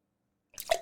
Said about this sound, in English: Damn it, I did it again. Wrong water. I did that last night in the locals. That water's like 3 days old and I spit in it and I just drank it again.